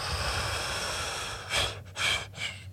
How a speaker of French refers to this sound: Tu sais, quand tu fais du tantrisme, c'est quelque chose que tu apprends beaucoup la respiration, tu sais. Puis ta dernière, celle que tu laisses sortir, ben tu fais...